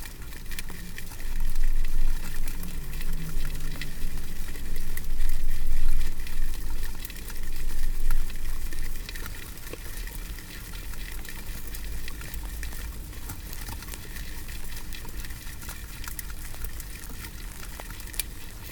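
Silkworms munching leaves make a dense, steady crackling patter much like heavy rain, a bit louder in the first half and then settling into a softer, continuous rustle with no voices.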